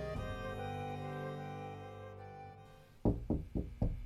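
A steady, sustained musical tone fades as about five firm, evenly spaced knocks on a door ring out loud over the last second.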